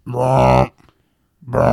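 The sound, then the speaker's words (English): A voice imitates the tripod noise from the film War of the Worlds with Tom Cruise: a loud, low, droning blare, then a pause and a second blast starting, harsh and buzzy. “You know, the fucking, the tripods, the noise they make?”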